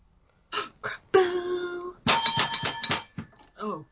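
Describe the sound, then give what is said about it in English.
A plunger bell rings, first a single sustained ding, then a rapid flurry of repeated dings, with brief bits of voice just before and after. “It got so the plunger bit got stuck.”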